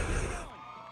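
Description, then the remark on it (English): A concert crowd cheers in a dense, loud roar that fades after half a second, leaving a thinner wash of voices with some gliding tones underneath. “The crowd keeps it going, though.”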